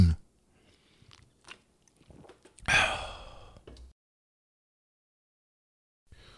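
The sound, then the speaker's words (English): A few faint sipping and swallowing sounds, then a loud breathy exhale of satisfaction after the drink, followed by silence. “Let me take a real quick sip.”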